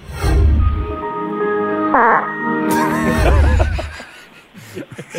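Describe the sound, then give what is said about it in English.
A music track with sustained, wavering tones, where a low, raspy fart noise blurts out at the start and again midway, set among the warbling melodic sounds. “as soon as I started listening to the track, I thought to myself, well, I know where the fart's going to go”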